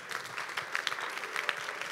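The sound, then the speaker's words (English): An audience claps together in a dense, steady burst of applause, many hands overlapping into a continuous crackling wash with sharper individual claps standing out, sustained for the whole stretch. “Give the Lord a clap of it and preach.”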